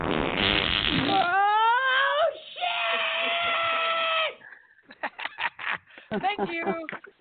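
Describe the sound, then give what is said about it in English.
A loud, drawn-out 'Batman fart' noise, apparently made with the mouth, starts with a sputtering blast and then stretches into a long, buzzy, wavering tone before brief chatter follows. “The Batman fart.”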